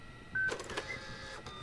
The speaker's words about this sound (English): Printer works, too.